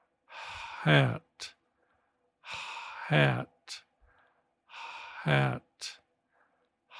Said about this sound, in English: And now I'll exhale. I'll let the air come out as I say the word.